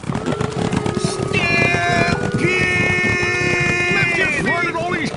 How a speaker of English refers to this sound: They're not cats, they're cows, and they're heading toward the water cooler.